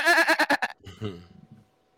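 A sheep lets out one loud bleat with a fast quavering tremble, then trails off into a lower, fading grumble before silence.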